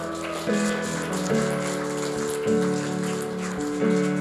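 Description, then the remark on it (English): A church audience claps steadily in a dense, continuous patter, celebrating new people joining the team, mixed with sustained music chords that shift every second or so. No one speaks. “Come on, someone clap your hands.”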